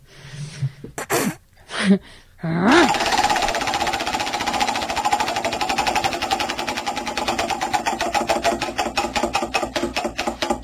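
A prize wheel spins with a loud, rapid run of clicks that gradually slow and spread apart as it winds down, preceded by a few short vocal bursts; the wheel is spun to pick who takes home a postal-friendly bottle opener.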